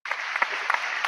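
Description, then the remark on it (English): A burst of applause, many hands clapping in a dense, steady crackle that starts abruptly and holds at an even level for about a second, with no voices. “Hold your applause.”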